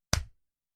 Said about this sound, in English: Do a clap. Get a clap in there. Let's get it going. Let's start over. And action.